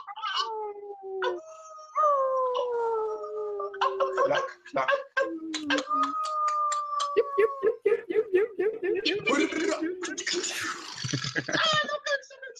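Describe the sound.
Several people howl like wolves together, long wavering tones overlapping, then break into laughter and playful yelps near the end, loud.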